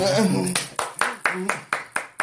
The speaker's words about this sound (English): I'll have my clapping sound.